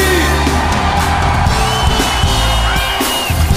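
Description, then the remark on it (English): A big crowd screams and whoops loudly and continuously for a few seconds, a dense wall of voices with steady musical tones running underneath. “Anybody, anybody, everybody scream.”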